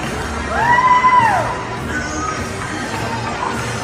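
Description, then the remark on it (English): Crowd cheering from balconies of high-rise buildings echoes outdoors in a steady wash of noise, with one loud arcing whistle or whoop rising and falling near the start, then a softer continuous roar. “So it's just obviously videos of, you know, high rises and people on their balconies just cheering and cheering.”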